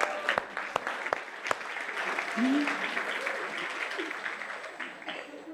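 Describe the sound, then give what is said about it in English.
Steady applause from an audience fills the whole stretch, a dense wash of clapping with a few sharper claps standing out early and faint voices murmuring underneath. “All right, you may now clap.”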